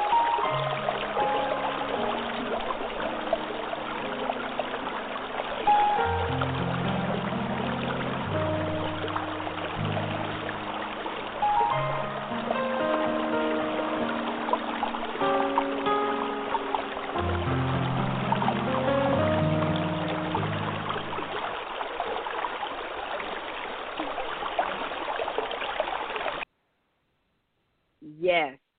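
Steady rushing of flowing river water fills the scene, fairly loud, with a low melodic music bed underneath, ending abruptly before a brief final blip.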